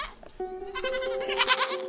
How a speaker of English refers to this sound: And you would absolutely see goats. Lots of goats. More than usual.